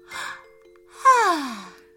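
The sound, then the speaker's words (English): A voice performs a small yawn of a girl lying in bed with her head on the pillow: a short breathy intake, then a soft voiced exhale that slides downward in pitch and fades out, with no words. “She wriggled down into her bed, and with her head on the pillow, she gave a little yawn and closed her eyes.”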